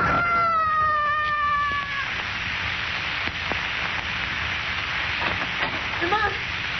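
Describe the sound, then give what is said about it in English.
A man's high, sustained scream as he loses his balance and falls 26 stories slowly drops in pitch over about two seconds, then gives way to a steady rushing hiss with a few faint clicks and thumps. “I heard a scream.”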